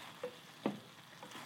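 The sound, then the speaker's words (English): Spicy seasoned sausages sizzle on a hot pot, a steady hiss broken by a few sharp pops and crackles, with no voices. “And then sizzling on the hot pot.”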